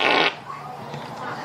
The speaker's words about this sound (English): Man. Some of these girls can really fart.